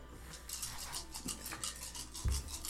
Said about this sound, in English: You hear that, guys? Yeah, it's a lot of dice.